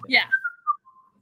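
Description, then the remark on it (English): A person gives a brief, clear whistle that slides downward in pitch and fades out over about a second, with a short burst of noise at the start. “And not whistling as you walk away.”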